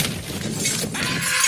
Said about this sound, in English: He like smashes a glass down on the table and he thought it was a prop, but it wasn't. It was a real wine glass, so it split his hand open.